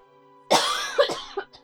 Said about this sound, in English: Because I don't know if you're going to make it the way you're coughing.